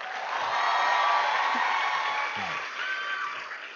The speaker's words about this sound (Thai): ก็ขอเสียงปรบมือดังๆคนที่จะมาบอกนักวิธีการและวิธีคิดในหัวข้อเก่งงานเก่งคนนะคะปรบมือดังๆต้อนรับนักธุรกิจแอร์เวย์ระดับเพชร